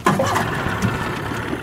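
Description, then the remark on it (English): The motor of a 16-foot John boat in Arkansas catches abruptly and settles into a steady, rumbling drone with a buzzing edge, holding at an even loudness throughout, as the boat sets off in the dark with two black Labradors aboard. Nobody speaks. “We're in a 16-foot John boat with two black labs. Driving the boat is Jimbo Ronquest.”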